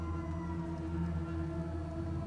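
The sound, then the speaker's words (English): A long wailing siren announcing the arrival of Medvac, getting louder, sounds as a sustained, droning tone with rich low harmonics, holding steady and fairly loud throughout without clear rises or falls in pitch, and no voices present. “I'm sure there was plenty more I could have investigated, but I could hear a long wailing siren getting louder, hailing the arrival of Medvac.”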